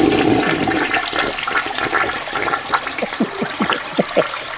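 A clogged toilet flushes with a broad rushing roar of water that gradually subsides into gurgling, bubbling drainage and a series of short glugs toward the end, fairly loud, with no talking.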